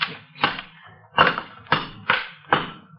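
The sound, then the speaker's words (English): A crowbar strikes a brick wall again and again to knock it down, six heavy, uneven thuds, each trailing a brief gritty crumble, with no voices. “Here, take this crowbar and knock that wall down.”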